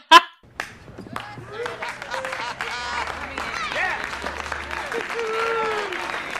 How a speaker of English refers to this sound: The manager, who has been threatening to bar him from the cafe for presumably years at this point, finally follows through and throws him out, and the whole cafe gets up and applauds.